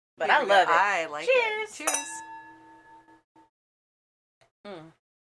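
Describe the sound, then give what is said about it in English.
Voices give way to a single bright clink of stainless steel wine glasses tapped together in a toast, the ring sustaining for over a second before fading, followed by a brief vocal sound. “We're back in the stainless steel wine glasses.”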